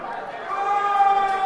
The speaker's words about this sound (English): Oh, no. The boos. Oh, no. I'm telling you.